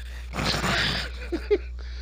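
A harsh, raspy cough bursts out for about a second, followed by two short, low grunting wheezes, giving it a gruff, dog-like snickering quality. No one speaks.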